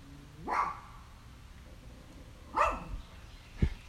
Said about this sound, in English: I'm sorry about those dogs, damn neighbor over there or something. I don't know what's going on. Shut your dogs up,